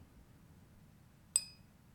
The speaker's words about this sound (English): You're hitting your wine glass. No, I'm hitting a glass, so I'll give you that.